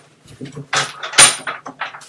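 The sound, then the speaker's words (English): A door is pushed shut, with a rattle of the handle and latch, a louder thump as it meets the frame, then a few lighter clicks and knocks. “And I'm going to go ahead and close this door because my wife is going to be coming home in a minute.”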